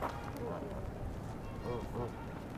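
Several short, low grunting calls from a Canada goose on a rocky beach, soft and spaced apart, barely rising above a steady rushing background of wind or lapping water.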